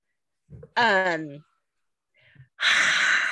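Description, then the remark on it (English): A voice imitates roaring applause: a rising, wavering vocal tone, then a brief pause and a long, loud breathy hiss, like a crowd's roar pushed out through the mouth. “That's supposed to be my roaring applause sound. I can never do it.”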